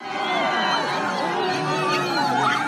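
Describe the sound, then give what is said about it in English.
A large crowd of supporters in Derbent, Russia's southernmost city, cheers and calls out while welcoming President Putin on a Wednesday morning, a dense, overlapping wash of voices holding steady and fairly loud, with no single speaker standing out. “That was the scene in Derbent, Russia's southernmost city, where Putin was welcomed by droves of cheering supporters Wednesday morning.”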